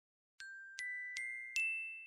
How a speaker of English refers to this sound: After pressing the screen where the stop alarm icon was, a well-practiced movement, she opened one eye